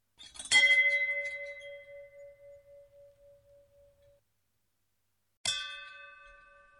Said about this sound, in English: It was someone's job to walk around the cemetery and listen for these death bells to go off.